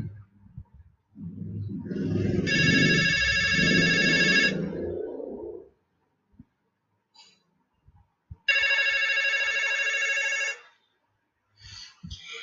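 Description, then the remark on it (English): The bell of a public telephone, like those in the subway, rings loudly in a hallway in two bursts of about two seconds each, separated by a pause, with a low rumbling noise under the first ring and no one speaking. “Then my telephone started to ring really, really loudly.”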